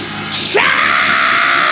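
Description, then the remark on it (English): A crowd erupts into loud, sustained shouting and screaming, many voices blending into a continuous roar that swells after a brief high-pitched burst and holds steady. “We're going to scream some stuff out of you.”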